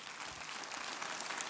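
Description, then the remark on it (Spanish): An audience at a church service applauds the Lord together, a dense, steady wash of many hands clapping at once, sustained at an even loudness throughout with no voices rising above it. “Dele un aplauso al Señor entonces.”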